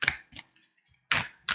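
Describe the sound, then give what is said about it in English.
A deck of self-love cards being shuffled: several short, crisp bursts of papery flapping with brief pauses between them. No voices are heard. “I'd like to pull one more self-love card, and I would love if you would help me with this one as well. So, okay. So I'm gonna go ahead and shuffle, and you tell me when to stop.”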